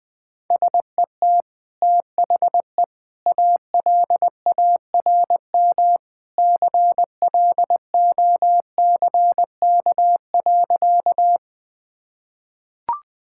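Morse code beeps at 20 words per minute in a single steady mid-pitched tone, keyed in short and long bursts separated by brief gaps, followed by silence and one faint click at the end.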